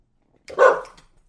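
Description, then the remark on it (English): A single sharp dog bark rings out, loud and abrupt, then quickly fades into silence. “And then the dog had to come in and ruin it.”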